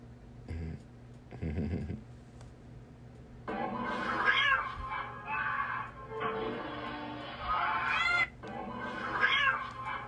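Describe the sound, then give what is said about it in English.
Several cats meow and yowl repeatedly from a cat video playing on a TV screen, the cries drawn out and overlapping, moderately loud over a low steady hum. “Watch the TV screen with the cats on there, like cat shit on there, like this.”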